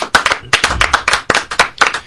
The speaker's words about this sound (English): One more round of applause for our winner.